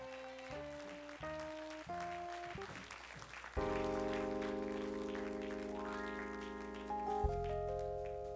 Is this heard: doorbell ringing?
no